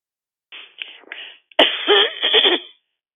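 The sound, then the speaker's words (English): A few soft, raspy throat-clearing sounds from a participant on a phone call are followed by a sharp click and then a louder, harsher burst of coughing, all slightly muffled and thin through the phone line. “Please mute your phone, whoever just coughed and cleared your throat.”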